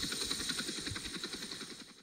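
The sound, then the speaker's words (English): Steady, loud helicopter rotor noise from inside the Barryville Radio Traffic Helicopter, with a rapid rhythmic chop over a high mechanical whine and hiss, continuous throughout with no voices. “It's really loud in the helicopter.”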